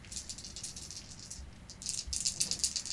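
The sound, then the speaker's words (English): Dice, including a twenty-sided die, rattle in a hand and are rolled to see who rolls highest, a steady run of crisp, rapid clicks that grows louder and busier toward the end. There is no talking. “Whoever rolls highest?”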